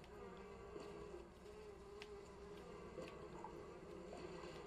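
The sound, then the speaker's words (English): A dense, steady buzzing of many bees in a video game hums continuously throughout, thick, with faint clicks and brief higher tones scattered over the drone. “Uh-oh, we got a lot of bees.”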